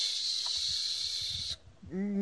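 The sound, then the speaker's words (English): A voice imitates rustling with a steady, breathy hiss that holds for about a second and a half, then breaks off into a short voiced murmur. “Rustling sound coming from somewhere down the passage, very faintly.”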